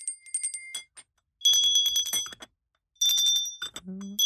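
Bright, ringing handbell tones play Twinkle, Twinkle, Little Star in three short bursts of quick notes, with brief pauses between, and a dull clunk at the end as the bells land back on the counter.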